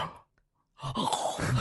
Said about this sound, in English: I gasp within my gasp. My normal gasp did a mini gasp inside of it.